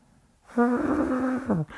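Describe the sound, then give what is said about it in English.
A person gives a short, held vocal imitation of an elephant trumpet, a steady nasal tone lasting about a second that dips in pitch at the end, kept fairly soft. “That's my elephant sound, quietly.”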